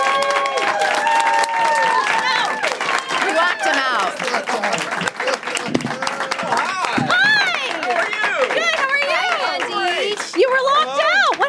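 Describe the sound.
Loud, steady audience applause for Andy Daly lasting the whole stretch, a dense patter of clapping mixed with cheers and whoops, while a few people talk over the noise.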